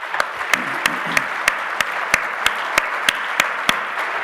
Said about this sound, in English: Can we give everybody, these guys, a round of applause, please?